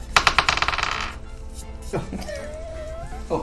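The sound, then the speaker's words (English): Dice clatter and tumble across a hard tabletop in a quick burst of rapid clicks lasting about a second, rolled for initiative, followed by a short, drawn-out vocal sound. “No, it's not the same dice.”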